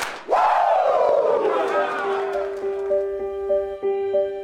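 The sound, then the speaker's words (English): A group of football players in a locker room lets out a loud, drawn-out Ric Flair "woo" whoop that swoops down in pitch and holds, while a few faint claps and shouts come through near the end. “Now give me two claps and a Ric Flair.”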